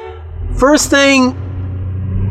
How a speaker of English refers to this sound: First thing that I thought about, though, as some jerk honks behind me, even though I was clearly pushing my gas, I can't live in a city.